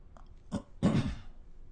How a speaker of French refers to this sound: Permettez-moi une petite gorgée d'eau, là. La chaleur et l'humidité du studio ont un effet sur la voix.